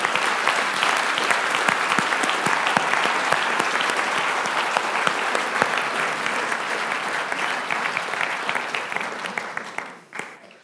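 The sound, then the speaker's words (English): An audience bursts into sustained, dense applause for the Lord, for his grace and mercy, many hands clapping steadily for about ten seconds before it tapers off abruptly at the end. “Let's clap the Lord, shall we, for his grace and his mercy.”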